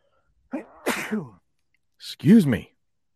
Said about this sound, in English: Oh no, I got to sneeze.